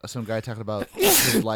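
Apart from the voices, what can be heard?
sneeze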